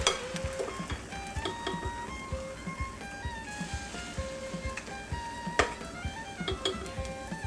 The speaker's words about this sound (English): Let it get good and hot. I preheated my frying pan. I've added my oil. And now I'm gonna start with my first latke. There's one. And they're a nice size. Two.